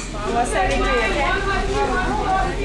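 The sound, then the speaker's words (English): Busy McDonald's fast-food restaurant ambience: a steady, fairly loud wash of overlapping voices and indistinct chatter, with a brief higher clink near the start. “We went to McDonald's.”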